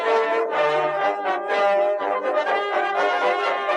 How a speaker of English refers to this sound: Coca-Cola has officially declared war on the pressing Pepsi uprising. Planes fly overhead as the boys in red at Coca-Cola successfully complete a bombing run, destroying several Pepsi battleships.